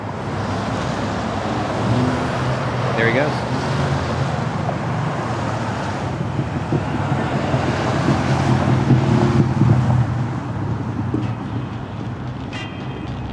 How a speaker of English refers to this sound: And every time he goes to court, they go through this whole song and dance just to bring him across the Brooklyn Bridge. Oh, and here it comes. We've got black SUVs with the lights on, a van, armored NYPD trucks, an ambulance, tons of cop cars.